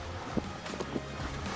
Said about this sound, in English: The boat, you feel it's going a lot faster past that pier